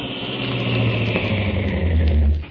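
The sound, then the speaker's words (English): A car pulls up and stops at the center of a tunnel, its engine rumbling steadily in a low idling hum with a faint higher whine, holding level for a couple of seconds before easing off at the end. “I'll pull up here.”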